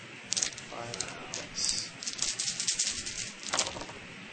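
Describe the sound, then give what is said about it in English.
Dice rattle and clatter across a hard surface in a few quick bursts of clicking, quiet, with faint voices murmuring in the background, as 5 dice and then 8 dice are rolled for damage. “So, 5 dice and then 8 dice.”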